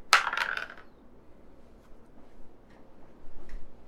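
A different die is rolled across a table, a quick burst of sharp rattling clicks at the start that settles within a second, followed by near silence.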